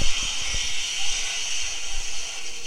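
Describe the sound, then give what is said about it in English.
A steady hiss of running shower water sprays without pause, bright and even throughout, with a few faint low thumps underneath and no voices. “They're in the shower now.”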